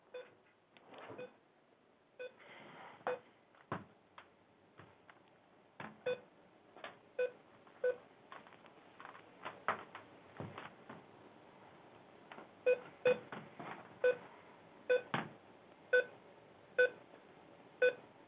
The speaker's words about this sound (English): Okay. Just so you know, if the fucking thing starts beeping again, I will break something.